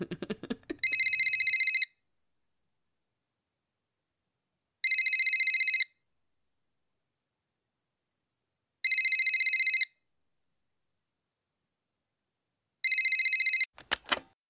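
A phone ringtone rings four times in evenly spaced, roughly one-second bursts of bright electronic trilling, loud, with silence between rings and a brief clatter at the end.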